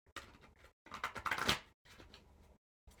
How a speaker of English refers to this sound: I'm just going to shuffle these cards real quick as we speak